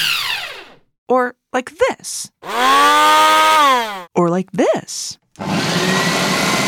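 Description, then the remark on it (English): A voice imitates a kitchen blender, a big glass jar sitting on a base with many buttons, with loud whirring hums that rise and fall in pitch, in short bursts and one long steady drone. A brief spoken phrase comes between, then a rough, noisy whir. “A blender! A blender is a machine that blends food together.”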